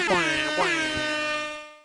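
A loud air horn sound effect blasts in quick repeated bursts, its bright harmonic stack wavering, then holds as one long sustained honk that fades out at the end. No voices.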